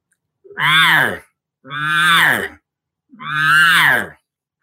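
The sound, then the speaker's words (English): A voice imitates a cow elk's buzzy mew call, also called a buzz mew or estrus buzz, which cows make year round. The call is done three times, each a drawn-out, raspy, nasal note that rises then falls, separated by short pauses. “So buzz mew, selfish buzz, whatever.”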